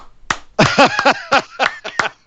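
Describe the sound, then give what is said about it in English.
A single person gives a standing ovation, clapping about nine times in a quick, slightly uneven rhythm, each sharp clap fairly loud, with no talking. “is standing and ovation. Applauding.”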